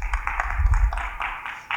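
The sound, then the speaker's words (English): An audience applauds a person coming up to read Bible verses, a steady, dense patter of claps lasting a couple of seconds, with no voices over it. “So could you guys give Diana a round of applause real quick?”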